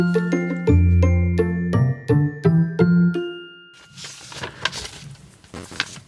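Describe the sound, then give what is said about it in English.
A short, bright chiming jingle of repeated tuned notes plays, then gives way to soft, irregular crackling and rustling of paper, as someone in a cupboard in England looks through paper to see what is on TV, for a couple of seconds, with no talking. “I can hear you rustling paper.”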